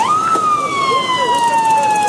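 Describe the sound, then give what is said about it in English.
A loud siren wails steadily, its pitch sliding slowly downward in a long sustained tone, with faint traffic rumble underneath. A line of police cruisers, fire trucks and cars is passing a 99-year-old veteran's house in West Brookfield to pay their respects. “The never-ending line of cruisers, fire trucks, and cars outside Sergeant Everett Allen's house in West Brookfield was a huge surprise”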